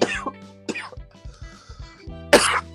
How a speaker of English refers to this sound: Sorry, I got a little of the coughs going from having too much fun